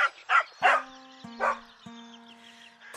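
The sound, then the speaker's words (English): A dog barks four or five times in short, uneven bursts, fairly loud, over a steady electronic hum of held tones. No one speaks. “I'm not sure how happy my parents would be with a dog in the house.”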